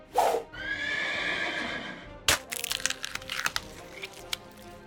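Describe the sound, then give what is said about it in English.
A horse gives a loud, drawn-out whinny, then a sharp crack rings out and a quick, uneven flurry of hoofbeats clatters past, with no voices. “the horse jumps out of the bonfire, does a quick, like, drift, if you ever seen a horse drift, to jump over the pawn, and as it leaps over the pawn, it does a slash, taking off one of the pawn's arms.”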